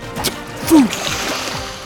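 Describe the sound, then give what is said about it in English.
Water sloshes and splashes continuously as a chain of canoes jumps over waves and swerves side to side, with a couple of sharper splashes standing out and a brief falling vocal-like tone near the loudest one. “Our chain of canoes jumped over waves, jumped side to side, and swerved like a long green snake.”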